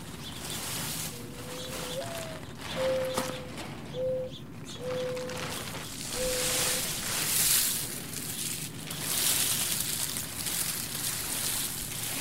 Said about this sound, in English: So I lift an edge of the tarp, and the pods on it cascade into a pile. To me, it sounds almost like a wind chime. It's a beautiful sound.